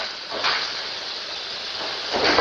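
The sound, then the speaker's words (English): A thin aluminum panel crackles like a tin can as it flexes up and down: two brief, crinkly bursts of sound over a steady background hiss, moderately loud, with no talking. “And so that's what a thin aluminum sounds like when it cracks.”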